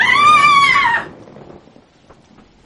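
A woman lets out one loud, shrill, sustained scream lasting about a second, then it breaks off, leaving quiet with a few faint taps and rustles.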